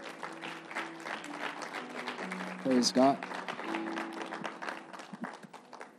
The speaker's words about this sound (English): If this word blessed you, let's give it a hand clap.